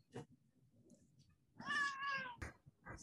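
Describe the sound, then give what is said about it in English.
A cat lets out a single clear, drawn-out meow with a falling pitch, loud, surrounded by a few soft clicks and faint background rustling. “That was like the most like Hollywood sound effect meow when you and it came through on the mic.”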